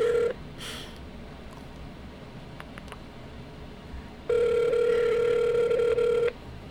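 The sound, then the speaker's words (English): A landline phone call to a grandmother's home phone ringing on the line: the steady, buzzy ringback tone ends just after the start, then after a few seconds of quiet one full two-second ring sounds clearly, with no voices. “It's nice having, like, older grandparents who still have a landline.”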